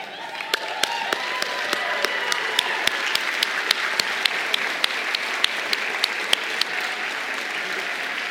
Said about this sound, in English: If you're here today and you're part of the Arlington ministry, would you stand for a moment? I've seen a lot of people walking around. Keep standing. I want you to see how loved they are. If you love these guys, stand and applaud them.